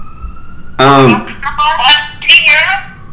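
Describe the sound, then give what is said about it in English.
Tinny, distorted speech from a speakerphone call, with a thin steady tone at the start before a voice bursts in loudly, then several choppy phrases follow in poor, crackly quality. “I'm on speakerphone. Yeah, you're on speakerphone. I didn't know if his phone. This quality is pretty bad.”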